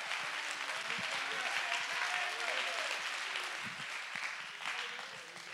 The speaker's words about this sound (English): Clap your hands and lift your voice and give him praise.